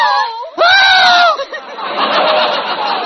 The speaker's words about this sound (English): What are you screaming for? Gee, you scare me, too.